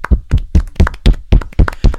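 A quiet golf clap: about a dozen soft, muffled hand claps in a steady, quick rhythm, each one short and dull, with no voices over them.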